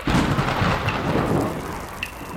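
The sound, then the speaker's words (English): A deep, rolling rumble of thunder from a storm moving off into the distance fills the scene, steady and loud throughout, with the hiss of falling rain underneath and no voices. “I want you to focus on that storm moving off into the distance.”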